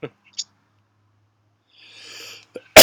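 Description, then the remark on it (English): A few short, sharp throat bursts and a breathy stretch lead into one loud cough that cuts off abruptly at the end; no one speaks. “Excuse my cough, and, like, I'm really...”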